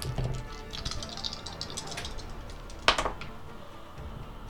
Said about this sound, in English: Second attack on the claw. No, we're gonna roll all the dice at once this time.